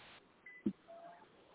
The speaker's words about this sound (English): Your phone was breaking up.